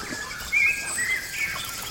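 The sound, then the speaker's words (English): A chorus of frogs calling, high, thin chirping and trilling notes layered over a steady background hum, with a louder burst of calls partway through. No talking. “Ooh, and check out these frogs calling loudly.”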